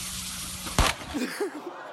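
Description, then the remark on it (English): A steady firework hiss sprays from a large hand-thrown toy plane with a firework attached to it. One sharp crash follows as it hits a neighbor's house, then a short cry from a voice. “He hits his neighbor's house.”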